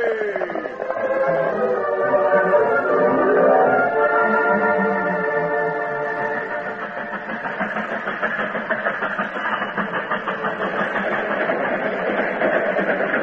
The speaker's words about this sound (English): Scheduled for a 14-hour stop in a southern Missouri town before continuing its journey, the westbound train pulled into the station at 10 minutes after 11 one night.